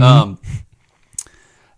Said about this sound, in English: But anyway, I just coughed.